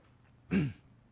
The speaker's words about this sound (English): And while you're doing that, I'm going to steal a gulp of water.